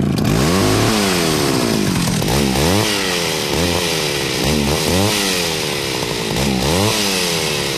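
A chainsaw revs loudly and repeatedly, its engine surging up and dropping back in a series of sharp throttle bursts over a steady buzzing idle, with no voices.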